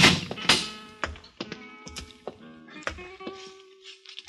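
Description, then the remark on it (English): A steel grill door is pulled open, with a series of metallic clanks and rattles that ring briefly, then a lingering hinge-like creak as it swings. “I opened the steel grill door.”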